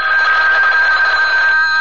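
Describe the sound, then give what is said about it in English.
A telephone bell rings continuously with a steady, bright metallic trill, loud, sounding alone with no voices over it. “I have to get the phone.”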